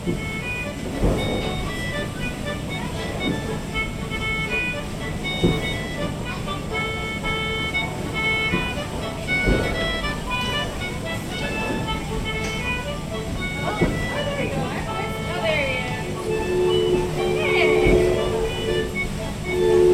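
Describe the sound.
A steady, rumbling riverboat ambience aboard the Mark Twain Riverboat at Disneyland: churning water and a low engine drone with faint humming tones, murmuring voices in the background, and a brief high tonal whine near the end.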